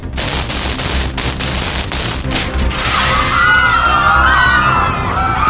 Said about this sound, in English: Oh, what was that? It shattered the glass!